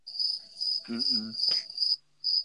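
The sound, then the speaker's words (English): Steady, high-pitched cricket chirping played as a sound effect trills loudly, pausing briefly near the end before resuming, with a short murmuring voice and a faint knock underneath midway. “Let me get my cricket thingy.”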